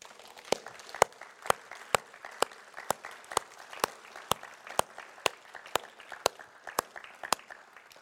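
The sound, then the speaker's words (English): A church audience applauds the women of the church steadily, a dense wash of many hands clapping with sharp, evenly spaced louder claps cutting through at a quick, regular beat for the full eight seconds. “We give the women a huge big clap.”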